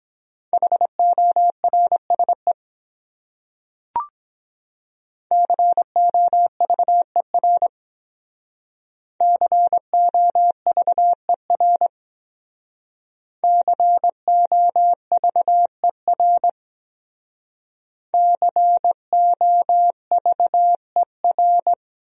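Morse code sent at about 17 words per minute: a steady mid-pitched tone keyed into rapid dots and dashes, in five separate bursts with short silent pauses between, no voices.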